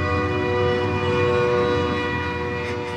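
A train rolls past on tracks that run along a road, near a small house and a factory. Its horn blares in a long, steady, loud blast that fills the whole moment, with a low rumble of the cars on the tracks.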